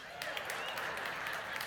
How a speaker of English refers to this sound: Wow. Lexington, they applauded here at Park Avenue.